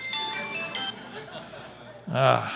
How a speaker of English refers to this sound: Now, who would call me in the middle of a sermon?